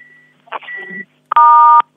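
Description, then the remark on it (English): A short burst of shuffling handling noise, then a loud, steady keypad tone with stacked pure pitches lasting about half a second, as a caller on a phone line fumbles the handset and presses buttons. “Yeah, the class captain is wrestling WWE style with the phone there.”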